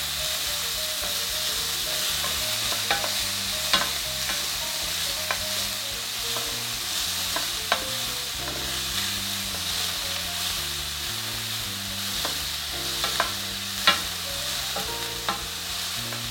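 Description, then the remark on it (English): A steady, bright sizzle of onion and garlic frying in a pan, with occasional sharp scrapes and clinks of stirring and a low hum underneath, no voices. “And the pan seems hot, so I'm just gonna saute the onion and garlic first, get that going.”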